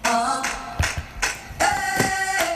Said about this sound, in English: If you hear them claps, you know what the fuck. You know what the time it is.